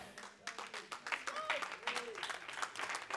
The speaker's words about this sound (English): Come on and give him a hand clap of praise in Jesus' name.